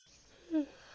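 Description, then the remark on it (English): A brief voiced yawn, a short low, breathy tone that swells and fades quickly against a quiet background hiss, with no one speaking. “Excuse me, I don't know why I'm yawning so bad.”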